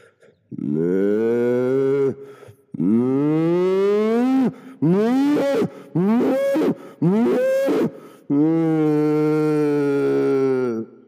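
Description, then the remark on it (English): A person imitates cattle lowing in a field, a series of five long, loud, drawn-out moo calls with strong harmonic tones, separated by short pauses, close to the microphone, as the chickens in the field run away. “Now, can you maybe firstly come a little bit closer and do a lowing sound for us?”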